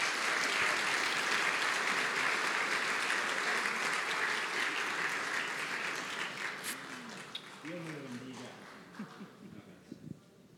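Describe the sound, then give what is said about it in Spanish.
A church audience applauds after a prayer, with dense, steady clapping that gradually thins and fades, while a few voices start talking and calling out as the clapping dies down toward the end. “Dar un aplauso, por favor.”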